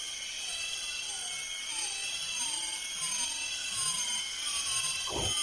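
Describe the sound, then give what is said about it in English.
About three or four six o'clock cicadas calling together, a dense, steady, high-pitched buzzing drone with overlapping layers and a slight pulsing rhythm, continuous throughout and moderately loud, with no voices. “So when we're listening to that clip, is that one cicada or we're hearing several? There's probably about 3 or 4 in that, that recording.”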